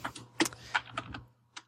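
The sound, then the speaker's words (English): Quick, irregular clicks of someone typing on a computer keyboard, fairly quiet, with a few sharper keystrokes standing out over a faint steady hum. “Now, see, that's the typing.”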